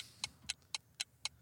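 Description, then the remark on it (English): A clock ticks steadily as time counts down for a trivia question, five sharp, crisp clicks spaced evenly about four per second, standing out clearly over a faint low hum with no voices. “Shot clock's ticking down.”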